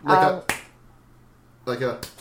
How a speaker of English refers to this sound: I'm just punching myself for the sake of the sound. Is it picking that up? It's picking it up.